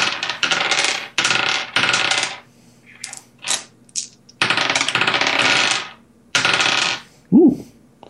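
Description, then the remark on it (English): Several bursts of rattling, clattering dice tumbling across a hard surface, loud, with short pauses between rolls and a brief low voice near the end. “A lot of dice. Well, I'm rolling for a bunch of people.”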